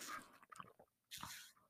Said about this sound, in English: it's a little coffee ASMR. I'm sipping on my coffee right now. Coffee gets me through the day.